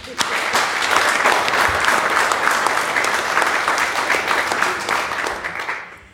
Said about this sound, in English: Give him a clap again.